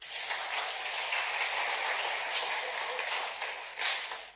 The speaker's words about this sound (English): Six gentlemen. Please stand so that they can see you. Thank you. Clap for them.